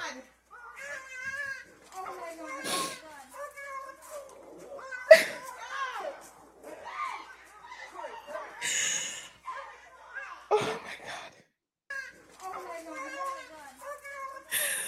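A female pet dog screams in pain after being grabbed on her owner's property, a string of shrill, wavering howls and yelps that rise and fall in pitch, broken by sharp harsh bursts and brief gasping pauses.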